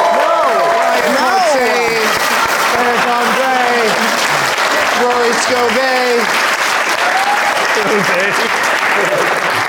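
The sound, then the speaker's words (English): A live show audience claps steadily and loudly for the guests Todd Glass, Sarah Silverman and Rory Koval, a dense, continuous wash of applause for the whole stretch, while a man's voice talks over it. “Let's hear for all my guests: Todd Glass, Sarah Silverman.”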